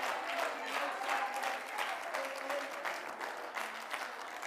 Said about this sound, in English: Come on, clap your hands.